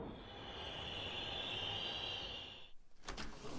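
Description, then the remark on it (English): A subway car rolls in with a steady, loud rumble and a high whine that fades as it slows, followed by a brief clatter like doors starting to open. “When the subway car pulled to the stop, the lady and her foul-smelling meal departed.”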